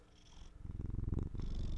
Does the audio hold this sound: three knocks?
no